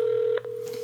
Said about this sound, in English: That's your phone.